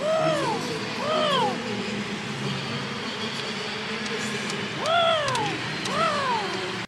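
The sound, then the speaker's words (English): A person imitates pigeon cooing: four throaty, rising-and-falling coos in two pairs separated by a pause, fairly loud over a noisy background. “They're just a bunch of pigeons.”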